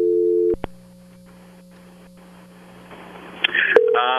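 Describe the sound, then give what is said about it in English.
A phone call being placed: a steady tone cuts off, followed by clicks, a hum of line noise and quick dialing beeps, then a short ringing tone near the end. No one speaks. “Let's give him a call.”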